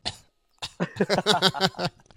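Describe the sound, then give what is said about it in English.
A person imitates a strained, held-in cough made while holding their ribs in, sore from injured rib cartilage: a short breathy burst, a pause, then a quick run of tight, voiced coughing sounds, fairly loud, with no other talking. “But still, when I coughed, I had to fucking... I was telling this story the other night. I had to hold my ribs in and be like...”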